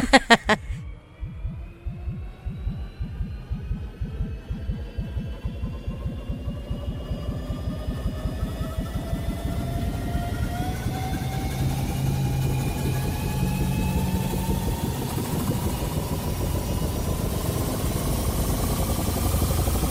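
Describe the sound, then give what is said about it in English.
A time machine travel effect: a deep, rapid throbbing rumble with a steadily rising whine layered on top, building for about twenty seconds after a few opening clicks, with no voices. “I'm going to need you to get into our time machine.”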